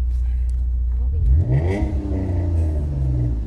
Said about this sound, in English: The beginning part where we're driving, all you hear is the bass of your car. Dude, that'd be so funny. Like all you can hear is my car.